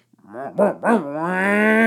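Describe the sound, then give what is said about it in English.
A person vocally imitates a bird mimicking a logging machine: two or three quick swooping whoops, then a long, steady, buzzing engine-like drone that slowly rises in pitch, fairly loud. “And he's like, and that is a logging machine.”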